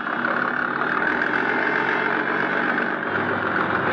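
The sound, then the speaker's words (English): A motorboat engine drones steadily as the boat shoves off from the waterfront, a loud, continuous rumbling hum with no voices, holding an even pitch and volume throughout. “My boat was all ready, so I went aboard and shoved off.”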